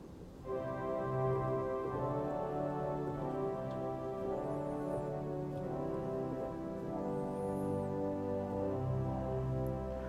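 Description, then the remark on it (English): Soft, sustained pipe organ chords from the quietest string stops, on the positif division, in a gentle string-like timbre, the sound steady and quiet with slowly shifting harmonies over about ten seconds and no talking. “They have these beautiful string section. The quietest ones is on the positif.”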